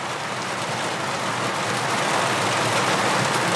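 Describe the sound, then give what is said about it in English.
Steady rain drums on a skylight overhead, a dense, continuous hiss of countless drops pattering with no voices, holding an even loudness throughout. “That sound, which you can probably, let me go and stand under the skylight so you can get a bit of a crack of it. That's rain.”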